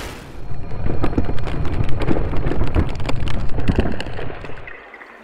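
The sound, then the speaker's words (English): Water gushes out of the ground and rushes forcefully, a stream of salt water: a loud, dense, steady roar that churns for about five seconds before cutting away. No voices are present. “And a glittering stream of water gushed out from the earth, a water source for the city.”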